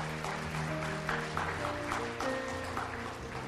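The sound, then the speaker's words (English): A church audience claps in a steady, dense wash that lasts the whole stretch, with sustained musical tones from an instrument holding chords underneath. “That you can clap at that if you want, but that's why you're here.”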